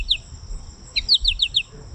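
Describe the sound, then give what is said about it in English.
A bird call recording played from a birding app: one quick high chirp, a short pause, then a rapid run of five or six descending chirps, clear over a faint low rumble. “So let me see if I can find the right audio recording here so I'm not giving you the wrong ones here.”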